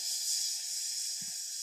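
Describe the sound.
A voice imitates meat sizzling on a grill with a steady, high, breathy hiss that holds for under two seconds, with a brief low puff near the end.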